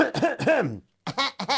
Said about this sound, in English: No. I was just clearing my throat. That's fine, but I'm clearing my throat so I can start the story.